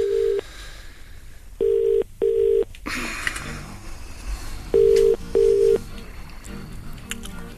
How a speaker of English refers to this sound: See if Berkey's got the balls to answer the phone.